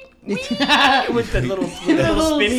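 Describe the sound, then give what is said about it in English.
A person's voice imitates the pig from a Geico car-insurance commercial squealing "wee," a loud, high, wavering cry that rises and falls and keeps going for a couple of seconds. “All I can think about is the Geico commercial with a pig.”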